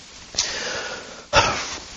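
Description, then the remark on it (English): Two breathy coughs about a second apart, each a sharp burst trailing into airy rasp, fairly loud and alone with no talking. “That was a cough”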